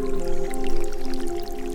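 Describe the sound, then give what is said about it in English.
Meltwater from the Sierra Nevada snowpack drips steadily in quick, scattered plinks as the accumulated snow melts in warm temperatures, moderately loud, layered over a sustained droning tone that runs underneath throughout. “When warm temperatures come, that accumulated snow starts to melt.”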